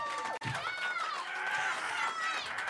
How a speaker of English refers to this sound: Come on, give a massive round of applause.